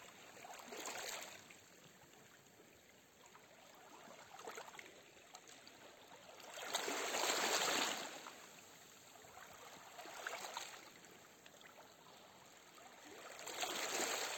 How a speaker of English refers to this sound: And as you listen to the water, sense how the waves move your body slowly back and forth.